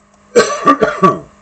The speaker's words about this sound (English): Oh, I thought I was going to cough up a lung or puke.